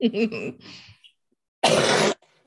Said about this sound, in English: So give me 1 second. Just getting over this cold. I haven't done this much talking in a week for the last 2 days. I've been talking and talking. Now it's like all, you know, going, oh, okay. Oh, now we're just going to make you cough.